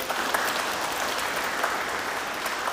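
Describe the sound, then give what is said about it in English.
Dense, steady clapping from a crowd in a church, mixed with fast leg tapping and foot stamping, sustained and fairly loud for a few seconds with no voices. “Tapping our legs really fast, stamping our feet, and clapping.”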